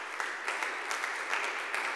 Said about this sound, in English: Now, clap your hands if you are clapping.